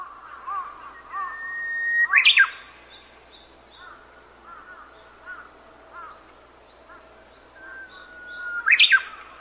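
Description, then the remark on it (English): A messaging device used for texting chirps twice, about six seconds apart, as its light flashes blue: a steady tone that sweeps sharply upward, loud, over soft bird-like twittering throughout. “There's a reason, because it was kind of like a gradual build from dark to bright blue, and then like two quick flashes of blue. So apparently that matched their chirp.”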